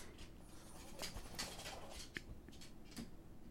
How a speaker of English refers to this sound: I'm trying to get the dog to calm down. He's like walking all over the floor. So that's the noise that you hear.